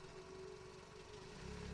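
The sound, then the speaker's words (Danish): A car engine is started and idles with a steady, low rumbling hum and a faint constant drone, running continuously throughout, with no voices, before the car drives into the police headquarters. “De starter bilen og kører ind på politigården.”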